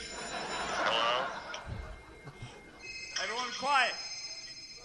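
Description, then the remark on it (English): An old-fashioned telephone bell ringtone on an iPhone 10 trills in two rapid bursts, moderately loud, with faint indistinct voices and background noise between the rings. “He has an actual old school phone ring.”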